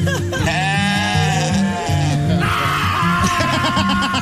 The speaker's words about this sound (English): That last one is my favorite. It's so mad. Oh, that reminds me. Somebody that I know has made all these goat sounds into all their ringtones, their text alerts, their email alerts.